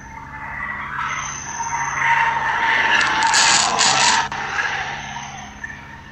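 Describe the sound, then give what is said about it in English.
A speeding car roars by with loud, drawn-out tire skidding and squealing that builds over a few seconds, then a sharp scrape-like break as the noise fades away. No one speaks. “You're going to see our car fly by here in a second.”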